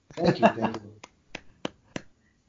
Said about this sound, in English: Thank you. That's clapping.